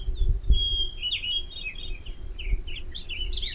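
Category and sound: bird, birds chirping in trees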